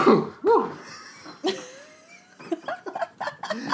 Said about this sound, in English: that was our podcast first sneeze. Oh my God. I mean, it's going to stay in because I'm not editing that out.